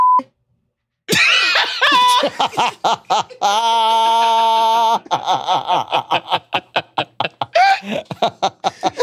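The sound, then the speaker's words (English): A flat, buzzy censor bleep holds for about a second and a half between bursts of loud laughter and chatter, after a very short tone at the start. “Wait, can you beep this out?”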